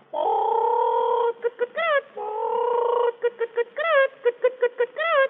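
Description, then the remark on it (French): A human voice imitates a hen's cackle after laying eggs: drawn-out nasal calls, then quick rhythmic clucks rising into sharp squawks. It is fairly loud, with nothing else in the background. “Là, une poule qui pond des œufs pour faire des omelettes au lard.”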